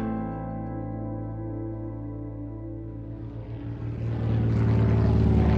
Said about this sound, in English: The plane lands.